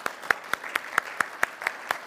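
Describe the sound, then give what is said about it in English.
A church audience claps together in a steady, even rhythm, about ten sharp claps in two seconds, moderately loud with no voices over it. “Can we just give a clap for these guys?”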